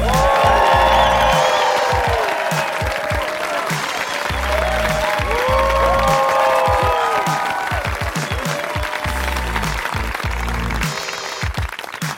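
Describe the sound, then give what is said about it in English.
A crowd applauds steadily for about twelve seconds as a comedian is welcomed to the stage, dense clapping mixed with cheers and whoops that rise and fall, staying loud and unbroken throughout. “It takes me a minute to get to the stage, so people got to clap extra long.”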